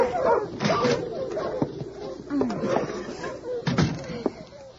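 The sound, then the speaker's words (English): A sled dog team yips, whimpers and barks in short bursts as a young girl unharnesses them in deep snow in front of a wooden cabin, with a door slam and some muffled voices mixed in among the busy, clattering commotion. “It has been snowing for several days, and the drifts are piled high against the snug wooden cabin in front of which a young girl is unharnessing a dog team.”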